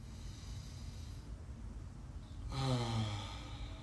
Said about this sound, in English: I'm gonna breathe here.